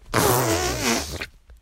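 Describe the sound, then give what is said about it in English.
An 8-year-old child blows a loud, wet, buzzing raspberry imitating a whale farting in the ocean, sustained for about a second with a wobbling, moaning pitch before cutting off. “and I am 8 years old, and this is my impression of a farting whale in the ocean.”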